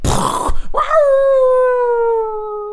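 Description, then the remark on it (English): After a brief burst of noise, a person imitates a wolf howl: one long, loud voiced tone that swoops upward, then holds and slowly sinks in pitch for about two seconds. “It's a wolf? It's a Thai wolf.”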